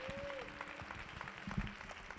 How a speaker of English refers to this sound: Come on, if you believe it tonight, clap your hands. Give him some praise in this place.